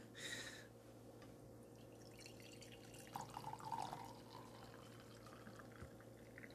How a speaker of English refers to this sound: Let's do some pouring of the tea, shall we?